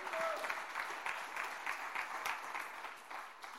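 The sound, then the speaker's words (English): A crowd of people claps steadily together as a clap offering to the Lord, a dense wash of handclaps with some sharper individual claps standing out, sustained at even loudness throughout with no talking. “Come on, somebody, give the Lord a good clap offering.”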